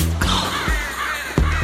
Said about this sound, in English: Can you take all these freaking crows or whatever these birds are you got in here with you?